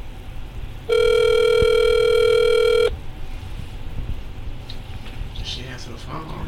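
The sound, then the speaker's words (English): A phone ringing on an outgoing call: one steady, buzzy ringback tone lasting about two seconds, loud, with faint background noise before and after. “First, you gotta answer the phone.”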